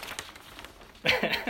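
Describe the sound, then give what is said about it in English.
Soft paper rustling and crinkling in a few brief bursts as folded pieces of paper are opened, followed by a louder burst of voices over the handling. “Let's open these pieces of paper.”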